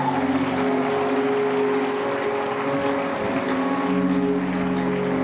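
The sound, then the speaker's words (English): A large church audience in Lagos claps continuously for several seconds in praise, a dense, steady wash of hands, with sustained instrumental tones humming underneath and no voices. “Clap your hands right there and release your praise.”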